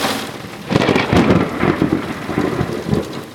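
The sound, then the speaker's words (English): A thunderstorm sound effect: steady rain hisses throughout while a loud, rolling rumble of thunder swells in after a moment and churns on, with no voices. “The listener will have hopefully just heard a sound effect that I could drop in about a storm, and it's because what rarely happens at my house here in Virginia is we lost power.”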